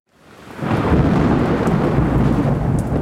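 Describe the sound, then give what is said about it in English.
A deep, sustained rumble of thunder made by lightning rolls in and stays loud and steady, with a wash of rain hiss over it and no voices. “Thunder is the sound made by lightning.”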